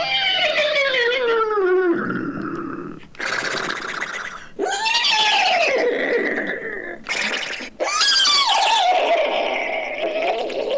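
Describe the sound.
A human voice imitates hysterical horse neighing as the character Henry the Hysterical Horse, closing The host's Nothing to Do with Anything show: loud bursts of wild, wavering whinnies and snorting blasts tumbling one after another for about ten seconds.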